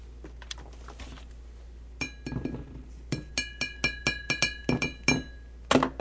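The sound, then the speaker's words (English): A plastic triceratops toy taps repeatedly against a glass wine bottle, a quick, uneven series of about a dozen bright, ringing clinks, fairly loud, with no talking. “For those of you playing at home, that's a triceratops banging against a wine bottle.”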